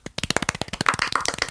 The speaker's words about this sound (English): Tiny round of applause.